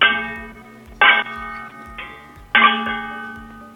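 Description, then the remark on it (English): Four loud metallic clangs ring out about a second apart as copper pans are banged together like cymbals, each leaving a bright, bell-like tone that hangs and fades. No one speaks. “Like sing that and like bang the pans to the beat of the music.”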